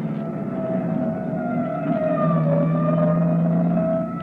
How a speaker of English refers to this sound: Nonsense. That siren is clearing the way for us. Let them get by. That's the salvage squad.